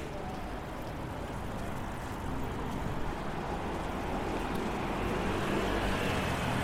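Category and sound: vehicle, busy street traffic noise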